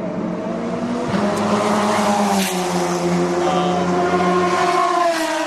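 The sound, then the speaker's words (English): Race cars roar past on the track at the Honda Indy race, heard from a spectator seat, their high-revving engines whining loudly and shifting in pitch as they go by, a continuous mechanical drone filling the whole stretch with no talking. “I got a seat. I can actually see cars going by.”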